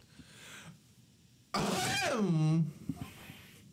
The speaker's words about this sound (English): He looks like he's sleeping. Maybe I should clear my throat.